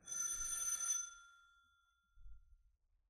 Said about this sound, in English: Ring the bell